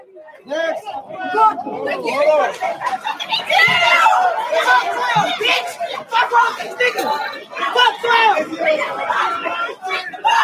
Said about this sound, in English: If y'all have been watching this, it's kind of fast forward where they break into a bank. Listen to the cheering. The cheering is what. Jumping up and down and cheering because they broke the window.